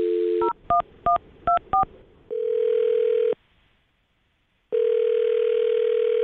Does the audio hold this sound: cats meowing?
no